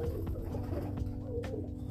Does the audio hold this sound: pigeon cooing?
yes